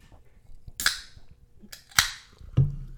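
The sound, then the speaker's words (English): Sharp cracks of AHA sparkling water cans, made by Coca-Cola, popping open: three crisp snaps, each followed by a brief fizzy hiss, with no one talking. “We're trying to recycle AHA sparkling water cans.”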